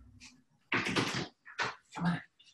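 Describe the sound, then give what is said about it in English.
A door opens with a few rough, scraping bursts and a rattle, followed by faint shuffling as two dogs come inside; a low hum sits underneath. “I got to let my dog in the door.”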